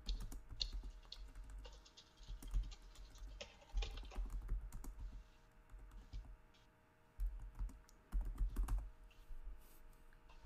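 Rapid keyboard typing with clustered clicks and brief pauses, fairly close and continuous over a low background hum, with no voices present.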